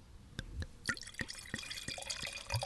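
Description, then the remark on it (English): Chardonnay white wine poured into a glass, a run of gurgling glugs and drips with rising splashy liquid sound, fairly quiet, no voices. “That was a Chardonnay pour.”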